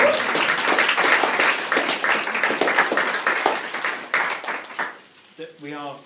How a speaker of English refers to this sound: Why don't we give a little clap over there?